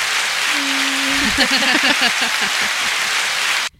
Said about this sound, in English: I'm gonna applaud it.